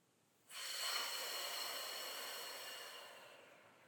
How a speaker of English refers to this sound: Just pause and take a deep breath. In through the nose, expanding the chest.